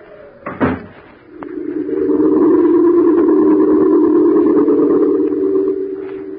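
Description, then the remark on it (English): A door is shut casually behind a person leaving, a single solid thud near the start, then a steady low droning tone swells in and holds to the end. No one speaks. “I shut the door behind me, very casually, just as if I really were going to London.”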